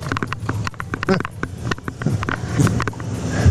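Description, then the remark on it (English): Steady, rhythmic clip-clop of the hooves of a horse pulling an Amish buggy on hard pavement, continuous, as a police officer tries to pull the buggy over, with a faint murmur of voices and road noise in the background. “I believe we have some body cam footage from the police officer who tried to pull over the buggy.”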